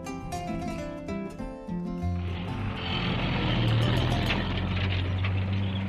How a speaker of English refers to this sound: The sound of the food lorry brings everyone crowding around the school building.